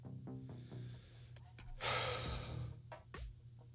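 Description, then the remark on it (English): A single deep breath drawn in, a loud airy rush lasting about half a second, framed by quieter breathy sounds and a low background hum. “Take a deep breath.”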